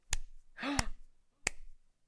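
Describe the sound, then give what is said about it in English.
Four slow, lazy hand claps spaced evenly apart, each a crisp smack, with a brief hummed vocal sound between the first two. “When she was clapping for …, like, it was the most, like, laissez-faire clap”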